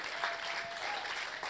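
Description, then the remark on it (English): A church audience claps for its campus team, a dense wash of many hands with no distinct individual claps, holding at a fairly even loudness throughout. “So how about you give a clap for all your campus team?”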